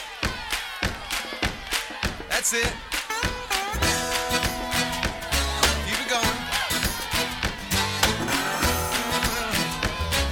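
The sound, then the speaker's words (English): An audience claps their hands and stomps their feet together in a steady, repeating rhythm, loud, while a voice briefly calls out encouragement; sustained musical tones rise beneath the beat partway through. “Stomp your feet like that, and let's clap together.”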